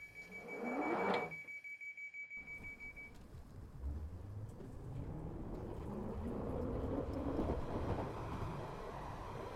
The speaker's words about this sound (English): This train is about to depart. The next station is Angel. Please, mind the doors.